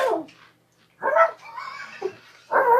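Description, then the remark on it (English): A dog whines in several short, high-pitched bursts, with rough scratching against the closet door between them. No one speaks. “Dog is scratching at the door of the closet.”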